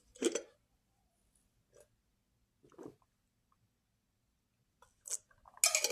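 Someone drinks water from a glass jar: a few soft, wet gulps and swallows spaced apart by quiet pauses, ending in a brief rustling, clattering burst.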